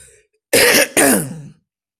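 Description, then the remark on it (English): Two loud, harsh coughs in quick succession, the second slightly longer and trailing off, with silence around them and no talking. “I keep trying to mute, but I think I tried to do that before, and I think it picked up my cough.”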